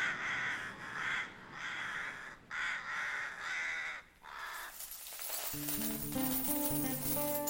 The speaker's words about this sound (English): The bumblebees buzzed, and the rooks cawed a slumberous accompaniment.